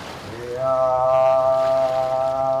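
A traditional Micronesian chant: a single voice slides briefly upward, then holds one long, steady, resonant note at a fairly low pitch, loud and unbroken to the end.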